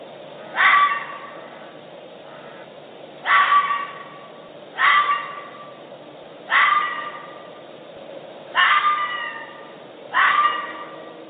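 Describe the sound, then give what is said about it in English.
A bobcat gives six short, harsh, bark-like yowls at uneven intervals, each about half a second long, mid-pitched and raspy, with quiet hiss between calls and no talking. “I'll play a bobcat, and then we'll get to the Umatilla sounds.”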